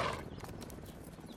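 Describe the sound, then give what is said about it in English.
A horse, with a brief whinny-like burst at the start followed by steady clip-clopping hooves over a low rumbling background, no talking. “And the horse.”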